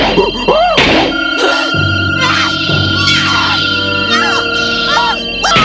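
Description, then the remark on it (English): Monkeyin smashes a metal machine to pieces with repeated heavy, clanging blows, while warbling electronic tones and steady hums sputter underneath in a loud, chaotic jumble. “How can we use it if you've smashed it to pieces?”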